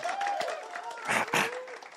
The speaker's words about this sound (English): And yeah, someone's going to give you a clap. Why? Yeah, come on.